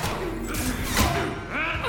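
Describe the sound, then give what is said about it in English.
A heavy crash as Kai Lang shatters a floor, revealing pipes and tubing, with a sharp impact midway through over continuous rumbling and crumbling debris, fairly loud. “And he shatters the floor, revealing some pipes and tubing and stuff.”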